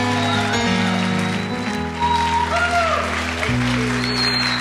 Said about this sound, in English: Please remain on your feet. Push your best hand clap together for the Bossmans tonight. Praise the Lord.